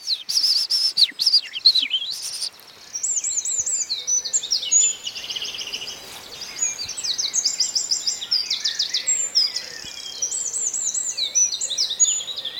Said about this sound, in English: There's a really energetic rattling trilling song coming from the wren. We feel like we're kind of surrounded by them. It's a tiny bird, but what a sound it makes.